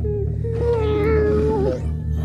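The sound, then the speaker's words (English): A cat lets out one long, drawn-out complaining meow, loud, wavering slightly before it trails off, over a steady low background hum. “The cat's protests became more and more intense.”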